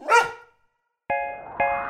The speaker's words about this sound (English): My dog loves to run in the park. Chasing a stick is a lark. But when a squirrel's nearby, you'll hear him cry when he lets out a mighty bark.